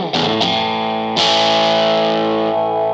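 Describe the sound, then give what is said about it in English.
A clean electric guitar played without overdrive, straight from the pickup with volume and tone bypassed, strikes two quick chords, then a third that rings out and slowly decays, with a wash of spring reverb trailing behind. Fairly loud, no talking. “Spring reverb in there.”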